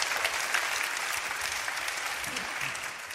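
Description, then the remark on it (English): Sustained audience applause as performers get on stage, a dense, steady patter of many hands clapping at an even, fairly loud level, fading slightly toward the end. “Anyway, the trick is to get on stage before the applause ends, and I think we did.”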